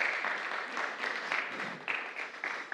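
A crowd claps steadily, a dense wash of overlapping hand claps with a few sharper bursts standing out, sustained and fairly even in loudness throughout, applauding the Director of Missions as he is invited up on stage.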